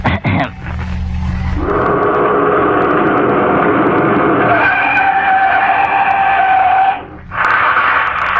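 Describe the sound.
A loud voice of an Amateur Hour contestant imitates a car crashing: a screeching tire skid, a sustained high squeal held for several seconds before cutting off abruptly, with no crash following.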